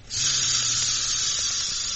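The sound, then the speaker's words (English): A clockwork toy train runs with a steady, loud hissing whirr and a low droning hum beneath it, holding evenly for about two seconds with no voices. “A clockwork train.”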